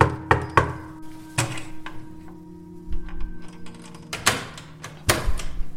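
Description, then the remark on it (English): Knocking on an apartment door: sharp raps in small clusters, a quick burst of three, then single knocks, and a second heavier pair after a pause, with a low steady hum underneath and no talking. “and I went back to the building to see what I could find, and I went to my old apartment and knocked on the door.”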